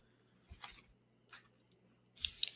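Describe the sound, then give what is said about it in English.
A fresh sheet of paper rips off a pad in a few short, scratchy bursts, with a brief pause between each. The last tear is the longest and loudest, over a faint steady hum. “Let me get another piece of paper real fast so I can keep track of the”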